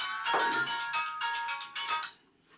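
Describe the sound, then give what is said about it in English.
A bright, cheerful ringtone on a detective's phone plays a quick melodic pattern of bouncy tones for about two seconds, then cuts off abruptly into quiet. “And that's when the detective's phone goes off.”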